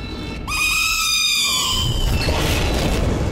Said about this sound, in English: As they speak, a siren issues from a nearby golden statue, and we begin to hear crashing noises, accompanied by shrieking, echoing howls and whines.